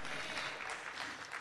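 An audience gives a hand clap of praise to the fathers on Father's Day, a steady, dense wash of applause, many overlapping hand claps forming a sustained crackling roar with no clear individual rhythm.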